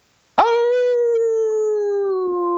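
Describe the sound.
A person imitates a dog's howl: one long, loud, sustained wail that starts abruptly, then slowly sinks in pitch as it holds steady for over two seconds, with no other sounds.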